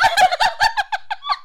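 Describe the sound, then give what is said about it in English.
A bride imitates a chicken during her wedding vows with a rapid run of squawky, clucking bursts that taper into shorter, softer clucks, loud with no other talk. “She loves chickens.”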